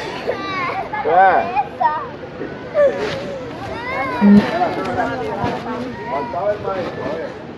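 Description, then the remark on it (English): Several young immigrant children held in a detention facility crying and wailing at once, their high, wavering sobs overlapping in a continuous, fairly loud chorus of distress with no pause throughout, on a tape obtained by ProPublica. “a week ago Monday, ProPublica obtained from one of the facilities where immigrant children being held this tape, which was the sound of children.”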